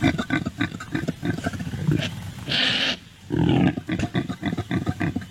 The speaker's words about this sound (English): Just when we think we have all the funny animal mating noises, Bob goes to Africa and finds an impala